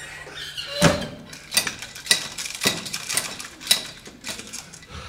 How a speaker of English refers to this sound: He ran through his front garden and flew into the house, bolting the thick oak door behind him.